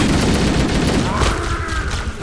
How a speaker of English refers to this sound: But, ooh, crap, everything's exploding!